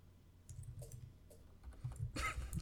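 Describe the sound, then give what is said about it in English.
Rapid clicking of a computer keyboard being typed on, a steady run of keystrokes with a louder burst of clatter near the end, no voices. “I hear typing.”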